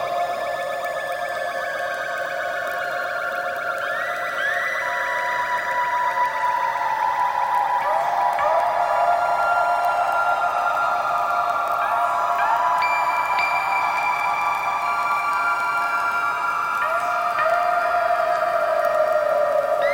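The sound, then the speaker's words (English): Sonified space-weather radio waves from the magnetosphere, recorded at Halley: layered, sustained whistling tones that slowly glide and step between pitches, steady and loud throughout, with a faint hiss underneath and no voices. “The radio wave data from Halley are used primarily for investigating the science of space weather storms.”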